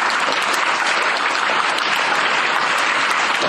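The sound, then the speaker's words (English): An audience claps together, but rather than one sharp unified clap the sound is a steady, dense burst of applause holding at an even loudness for a few seconds, with no voices. “Please give me one loud power clap.”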